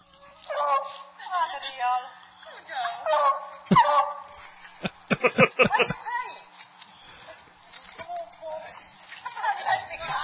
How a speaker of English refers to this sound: I don't know how good it'll sound, but it'll be amusing anyway. We have a new neighbor that has a beagle. Did you ever hear a beagle bark?